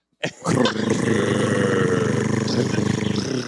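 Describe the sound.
A person imitates a cat's purr with a loud, continuous throaty rumble that holds steady for about three seconds after a brief onset, with a rough, slightly pulsing texture.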